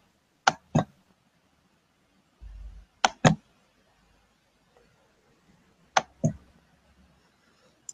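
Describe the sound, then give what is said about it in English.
Three quick, crisp double-clicks from a computer mouse, spaced a few seconds apart amid quiet, with a faint low thump between them, as someone shares their entire screen and clicks to go full screen. “Then you said I should click on the full screen.”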